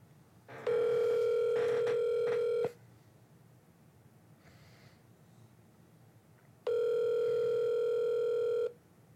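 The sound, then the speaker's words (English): A phone ringback tone heard over speakerphone: two long steady electronic rings, each about two seconds, separated by a pause with faint background noise. “It says it's still ringing.”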